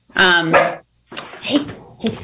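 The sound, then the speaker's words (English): A therapy dog that stays in an office and walks around barks several times, a long drawn-out bark followed by a couple of shorter, rougher ones, loud with brief pauses between. “That would be the therapeutic dog that hangs out in her office and walks around.”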